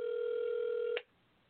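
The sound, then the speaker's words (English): A steady electronic telephone ring tone of a call to the speaker's son hums for about a second, then cuts off abruptly with a click, leaving faint line hiss. No one speaks. “I think I should have just called him on the show part”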